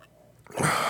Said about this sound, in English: Let me take another sip of this. Very good IPA. I like to smell it. It smells so good too.